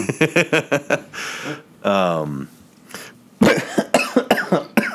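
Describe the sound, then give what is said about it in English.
A single loud cough bursts out, deep and chesty, amid bits of talking and other throaty vocal noises. “That cough had some really nice bass in it.”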